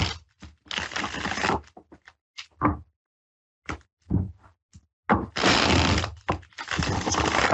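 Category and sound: household object, tarot cards being shuffled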